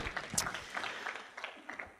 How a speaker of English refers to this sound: Oh, look at our team. Let's give a big round of applause for our team. Thank you.